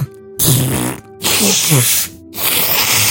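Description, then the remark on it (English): Someone blows their nose in three loud, long, noisy blasts, each with a low, fluttering honk running through the rush of air, separated by brief quiet gaps. “Oh my god, I need to blow my nose.”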